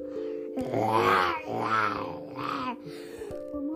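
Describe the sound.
A voice imitates little dinosaurs in a story roaring: three drawn-out, growling roars that rise and fall in pitch, loud and rough, over a steady low musical tone.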